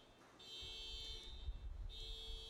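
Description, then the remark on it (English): A car alarm blares a steady, high-pitched electronic tone in long sustained blasts with a brief break between them, over a low rumbling background noise. “Sounds like someone's car is going off.”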